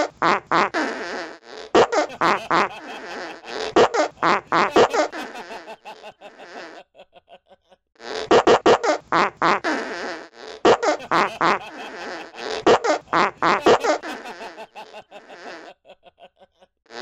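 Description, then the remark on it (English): A novelty phone ringtone made of fart noises plays a loud sequence of sputtering, buzzy bursts at varying pitches, pauses briefly, then repeats the same pattern a second time. “That's his ringtone, and every time you hear it, it just...”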